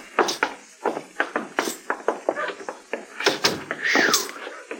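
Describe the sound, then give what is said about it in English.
A key rattles and clicks in a lock with a quick series of sharp metallic taps, then a door is pushed open with a short creak, clear, with no talking. “You got the key, Chester. Yes, sir.”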